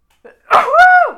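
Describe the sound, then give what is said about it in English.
A single loud sneeze from allergies: a quick sharp intake of breath, then an explosive burst that trails off into a short voiced tail. No talking accompanies it. “Hopefully I'm not going to sneeze here. I feel it coming on.”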